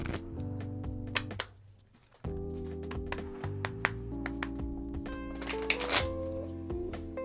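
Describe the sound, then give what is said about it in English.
Cards for a weekly card reading are slid out and shuffled, a run of crisp, rapid taps and riffling clicks with a brief pause partway through, a low steady hum underneath and no talking. “I'm going to pull the cards out.”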